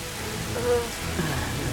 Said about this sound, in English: Is this a bad time to say I rolled a 7 to my act under pressure when the rain started coming down like a freaking sand slide on me?